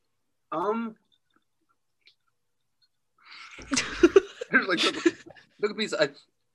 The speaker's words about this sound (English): I really enjoy chewing ice. I took a piece of ice and I'm like, I'm not gonna chew. I shouldn't chew ice while I'm doing this.